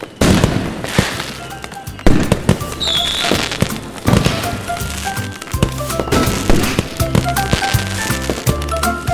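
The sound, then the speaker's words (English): Fireworks go off in a steady barrage of booms and crackling bursts, with whistling rockets shrieking between the blasts, loud throughout. “I love fireworks.”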